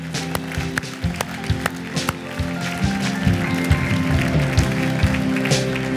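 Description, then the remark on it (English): An audience claps for the Lord together after a prayer, in a steady, dense patter of many hands that carries on for several seconds, with sustained low musical tones humming underneath. “Come on, let's give the Lord a clap, clap.”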